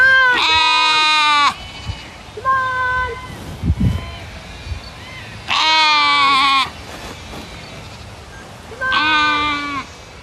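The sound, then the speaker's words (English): Southdown baby doll sheep bleat loudly, three long wavering calls spaced several seconds apart, with softer, shorter bleats in between. “who breeds a variety of sheep known as Southdown baby dolls.”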